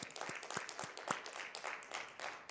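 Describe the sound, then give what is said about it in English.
A round of applause from a crowd for the funders Sask Arts, the Canada Council for the Arts and the City of Saskatoon, with many overlapping hand claps forming a steady, dense patter at moderate volume, a few sharper individual claps standing out. “Round of applause for those funders.”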